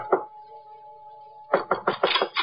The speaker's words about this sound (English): I went up the stairs, but when I knocked at his door...